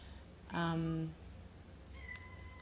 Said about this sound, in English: I have other kittens, as you can hear them crying in the background.